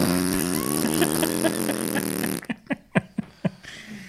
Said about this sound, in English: Have you seen where they put the fart whistle on the exhaust pipe? It's like...